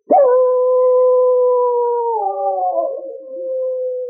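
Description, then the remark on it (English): A dog lets out one long, loud howl at the full moon, holding a steady mournful tone for about two seconds before it wavers and trails off, with no other sounds. “Ricky nosed open the door of the cabin and howled at the full moon.”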